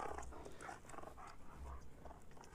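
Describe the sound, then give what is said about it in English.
A dog barks and growls in a string of short, repeated bursts over a low rumbling undertone, fairly quiet, with no one talking. “What's the dog doing?”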